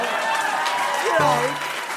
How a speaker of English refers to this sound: I started to hear some rhythmic clapping. Let's hear it. I want to hear it.